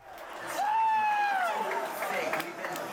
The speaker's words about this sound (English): The roar from the crowd may sound familiar, but the game probably isn't. Packed tightly into a multi-level bar in Hollywood, over 300 rabid fans cheer for their favorite team